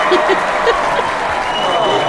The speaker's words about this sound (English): Round of applause.